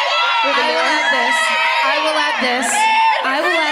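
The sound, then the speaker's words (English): A crowd whoops and screams continuously, a dense wall of many high, overlapping voices, loud and sustained throughout with a few sharper shrieks rising above the din. “Raise, scream all you want. I still have to say it.”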